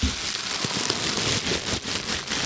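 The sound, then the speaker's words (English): Steady, dense crinkling of a paper receipt from Xingxiong being handled, a bright papery crackle with small sharper crunches scattered through it, moderately loud and with no voices. “This receipt is from Xingxiong. Can you hear this paper?”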